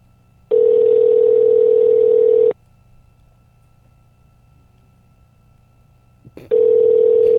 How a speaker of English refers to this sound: Phone's ringing, dude.